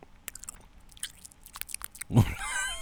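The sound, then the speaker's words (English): Close, crisp chewing and biting with repeated wet crunches and smacks, rising into a louder burst of mouth noise near the end, right up against the microphone. “Sorry, I'm chewing in your ear.”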